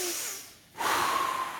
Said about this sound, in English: And let's just do this, you know, for the sake of like just the overwhelm. Let's all take a deep breath on three. Ready? One, two, three.